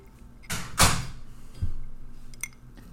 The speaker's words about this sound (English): Close my door.